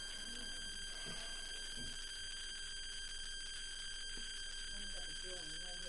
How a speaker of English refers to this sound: I'll take the drilling outside. At least it's intermittent. Like, I at least know it's drilling and not just being absorbed by my central nervous system.